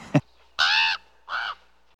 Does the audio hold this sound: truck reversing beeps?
no